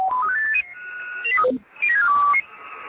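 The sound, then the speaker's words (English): Electronic tuning tones from a software-defined radio being tuned with no signals present step quickly upward in pitch, drop back down, then climb again, a series of clean beeping notes with no talking. “What you were looking at here is not fascinating, but if you can hear the tones, what you see really is that is the way you're tuning.”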